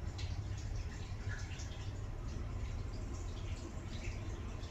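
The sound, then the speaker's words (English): Water trickles and splashes steadily from an overflowing sink, a continuous soft rushing with faint drips mixed in, fairly quiet and unbroken throughout. “Sink overflowing.”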